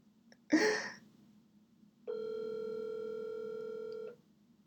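A short burst of noisy rustling, then a telephone ringing as one steady electronic tone that holds for about two seconds before cutting off. No one speaks.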